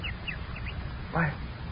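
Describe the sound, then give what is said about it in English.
A swallow in a cold town twitters with several quick, light chirps, then gives a louder, harsher call near the end, set against a low murmuring background. “Why, this is remarkable. A swallow. Yes, a swallow.”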